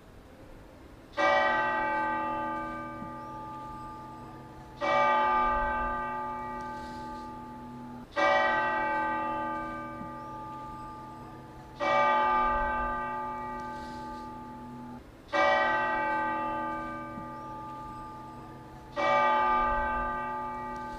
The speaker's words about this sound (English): I peaked when I was able to record the bells from inside the cathedral.